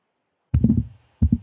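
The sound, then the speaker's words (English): Two dull, low thumps of a head bumping a microphone: a heavier, rumbling knock followed by a shorter second bump, with no talking. “That's my head hitting the microphone.”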